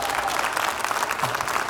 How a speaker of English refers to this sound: And again, clapping. Thank you. I got the cheerleader section going here in this service.